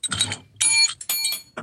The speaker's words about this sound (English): I think we might have the same bell. It's the one from the office store. Really? Yeah. I got mine Amazoned.